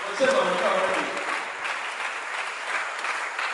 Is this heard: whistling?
no